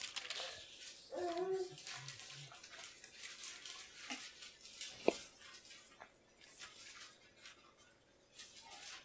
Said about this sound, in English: Hear the pages turning? I love my pastor would always say, boy, I love to hear those pages turning. I mean, you brought your Bibles.